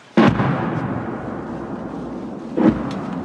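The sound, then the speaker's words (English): Two heavy artillery blasts, recorded by a soldier in Moshun, Ukraine, the first at the start and a second about two and a half seconds later, each a sharp booming impact followed by a long rumbling roar that never fully dies away. “So they dug this trench here just across the river from Russian positions, of course, to take cover from things like this.”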